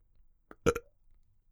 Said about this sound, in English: Did you do that purposely? Do what purposely? That burp that is not going to be cut out. No, yeah, I did on purpose.